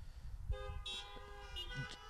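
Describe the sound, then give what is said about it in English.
Several car horns honk together in a long, overlapping chorus of sustained tones, with a few extra toots on top and a low idling rumble underneath, as a church audience in their cars answers the preacher's call for an amen. “Okay, everybody else is a liar. Anybody that didn't honk, you all waste things.”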